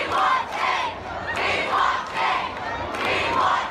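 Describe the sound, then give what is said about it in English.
A large protest crowd chants in unison, a loud rhythmic two-part phrase repeated three times with steady pulses of massed voices, continuous crowd roar underneath. “Obviously, we just heard the chants.”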